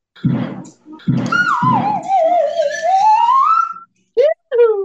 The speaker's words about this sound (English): Got a slide whistle in there. That's how much you guys fucking roll. Fucking A. Slide whistle worthy.